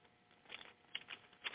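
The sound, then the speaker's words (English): Quiet rustling of paper pages being flipped after a fan blew the page over, a few short crinkly bursts spread over about a second and a half, with no one talking. “God said, he said in 16, my page blew over because my fan on. Give me a second here.”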